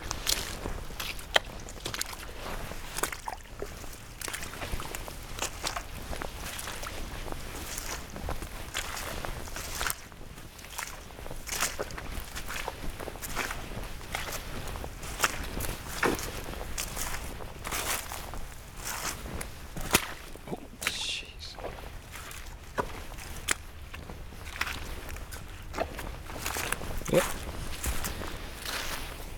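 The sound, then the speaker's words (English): Steady footsteps tramp along a public footpath over boggy woodland ground with beech trees in West Sussex, England, in sunshine, each step a wet, squelching crunch in an irregular walking rhythm that carries on for the whole stretch. “I hope you can hear how boggy it is, because it really is.”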